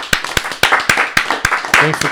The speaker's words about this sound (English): Should we clap it up for the new guests? Clap it up for all the new people in here.